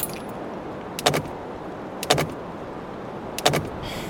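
Car keys jangle in the ignition switch of a combustion-engine vehicle in three brief, bright metallic bursts about a second apart, each a quick cluster of clinks over a low, steady background hum, as someone tries to start it with no power to the engine. No one speaks.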